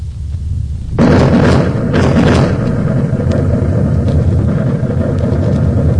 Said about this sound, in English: The sound of the explosion finally caught up with us. Out of the great silence came a mighty thunder. It was the blast of thousands of blockbusters going off simultaneously at one pinpoint. The thunder reverberated all through the desert